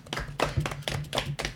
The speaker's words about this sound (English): Everyone clap for Drax.